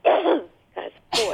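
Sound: sneeze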